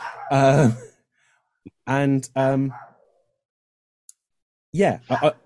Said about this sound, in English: And there goes the dog. Great.